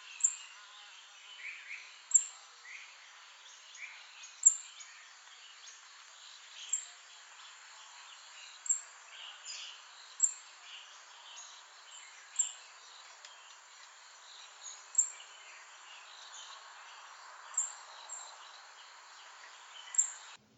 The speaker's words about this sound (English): And the last one there was rufous-tailed robin.